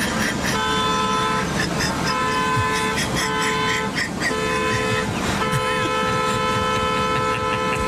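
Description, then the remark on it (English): A car horn honks over and over, long steady blasts broken by brief gaps, loud above a constant rumble of traffic. “You wire the alarm to the brake pedal. The horn to the brake pedal.”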